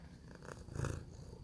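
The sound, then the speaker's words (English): A male outdoor tomcat purrs steadily, a soft, low rumbling drone with a gentle pulsing rhythm and no voices over it. “You gonna purr say hello? Huh? He's gonna purr.”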